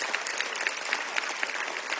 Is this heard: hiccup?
no